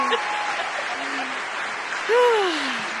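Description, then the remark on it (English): An applause sound effect: steady, dense applause from a crowd fills the whole stretch, joined by a couple of rising and falling whoops or whistles near the end. “We need our producer to add in some clapping music.”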